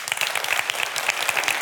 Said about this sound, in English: Applaud if you think it's okay.